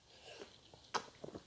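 Someone takes a quick sip of diet Mountain Dew soda: soft wet mouth noises, a sharp slurp at the middle, then a few small gulping clicks. Quiet, with no talking.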